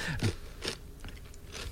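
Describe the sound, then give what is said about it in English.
Crunchy chewing of cheese: four or so moist, gritty crunches spaced irregularly over a couple of seconds, fairly loud, with no talking. “Okay, I'm going to chew now.”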